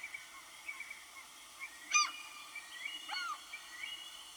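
Seagull calls: two harsh, squawking cries about a second apart, fairly faint over a steady airy background hiss, with no one speaking.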